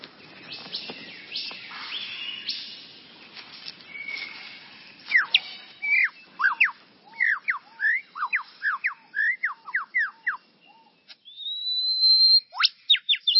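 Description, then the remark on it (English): A superb lyrebird of southern Australia sings a loud, varied sequence: harsh mixed calls at first, then a rapid run of repeated sharp whistled notes, ending with a long rising whistle. “Well, I guess there are lots of contenders, but this bird must be one of them. The superb lyrebird of southern Australia.”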